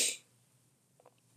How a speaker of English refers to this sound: I promise I'm not ripping a bowl or anything. I just had a cough.